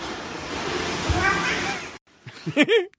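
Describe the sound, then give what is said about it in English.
After a couple of seconds of steady rushing noise, a cat, caught as a camera turns a corner, looks up and lets out a short, rising-and-falling meow that sounds almost like a spoken "well, hi." “The camera turns the corner, he gets caught and looks up and says, well, hi.”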